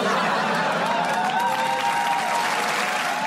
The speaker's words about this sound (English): The last line really brought it home, and they knew that they were going to get a cheer from the audience on that one.